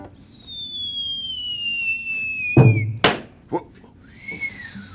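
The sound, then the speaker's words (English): A long, steadily falling whistle of a blazing fast-pitched ball thrown by Satch streaks past for a few seconds, ending in a heavy thump, a sharp crack and a smaller knock, then a brief arching whistle. “Then he must have pitched a blazing ball, cause there was a whistling sound.”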